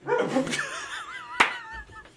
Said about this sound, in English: Oh, boy. There's a dog.